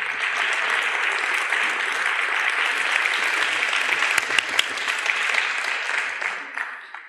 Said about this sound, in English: So could I have two wonderful, amazing, incredible volunteers? Round of applause, folks.